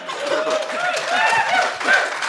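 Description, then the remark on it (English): An audience cheers and whoops for a couple of seconds after the speakers say they will not talk about race anymore, a dense wash of many voices with rising shouts and a few scattered claps, steady and fairly loud throughout. “Wait, why is everyone cheering that we're saying we're not going to talk about race anymore?”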